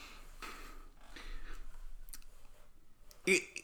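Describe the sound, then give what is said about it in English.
A computer mouse clicks repeatedly at uneven intervals, fairly soft, with a sharper, louder click near the end over a low background hum. “I just kept clicking on it.”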